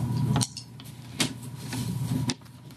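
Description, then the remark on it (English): A few sharp clicks and rattles of dice rolled for a tabletop role-playing game, tumbling across a hard surface and landing on a total of 7, spaced out over a couple of seconds against a low background hum, fairly quiet. “I do not have my easy roller dice to hit 3. But that is a 7.”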